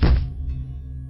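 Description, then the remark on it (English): A single heavy bang against a wall inside a flat, a deep, dull thud up close that fades into a low, lingering rumble. No voices. “There were rapid footsteps moving around the flat, a couple of screams, and then a bang on the wall beside me.”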